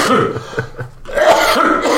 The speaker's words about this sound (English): I got a cough. You got a cough? Yeah. Okay, turn your head the other way.